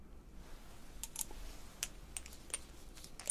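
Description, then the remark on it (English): Ear drops fizzing in the ear: a soft, irregular crackle of tiny pops and clicks, bright and sharp, over a faint low hiss, with no one talking. “Can you hear the fizz?”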